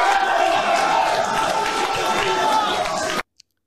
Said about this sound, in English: Applause in the whole room.